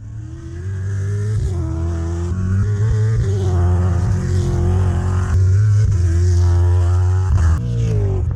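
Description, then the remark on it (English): Big V8 race car engines roar around a racetrack continuously for about eight seconds, loud and throaty, their pitch rising and falling as they rev through the gears, with no voices present. “That is the most magnificent sound of big V8s ripping around a racetrack.”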